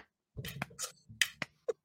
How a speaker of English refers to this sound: What is that? That's the duckbill clap. Holy shit. That's pretty awesome.